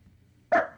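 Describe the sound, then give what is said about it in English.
A small dog lets out a single sharp, high-pitched, loud bark after a moment of near silence with only a faint low hum underneath. “Oh, little guy. Yeah, we got a little guy, too. We got two dogs.”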